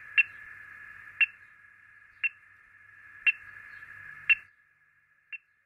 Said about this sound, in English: Homing involves walking or driving around with the antenna until the bird is located. The closer the antenna-wielding scientist gets to the bird, the louder the beeps or pings that come from the receiver.